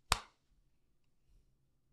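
One sharp hand clap rings out on its own, a bright, crisp smack that decays quickly, followed by near silence with only a faint low rumble.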